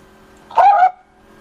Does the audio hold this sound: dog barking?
yes